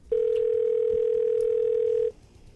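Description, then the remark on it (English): A telephone dial tone hums steadily for about two seconds, loud, while a call is being placed, then cuts off abruptly into quiet background noise. No one speaks. “This is the Leroy Earl Show, and we're calling Jesus Christ himself on the heaven phone.”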